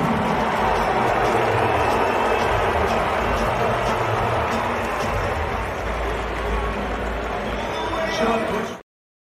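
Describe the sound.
An arena crowd of Suns fans boos DeAndre Ayton after an intro video welcoming him back to the Valley, a dense, sustained roar of many voices that holds steady for about nine seconds before cutting off abruptly.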